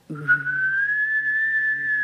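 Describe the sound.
A person hums a low steady note while whistling a sustained, slowly rising tone at the same time, producing an eerie, wavering sci-fi sound, fairly loud, lasting about two seconds.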